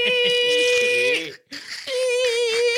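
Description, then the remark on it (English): A voice imitates the screeching of a spell being cast in midair, like nails on a chalkboard, with a shrill, strained squeal, held and wavering, then cut by a brief pause before a second steady, piercing screech. “Imagine when you do it, it's like paste. It's like nails on a chalkboard, but in midair.”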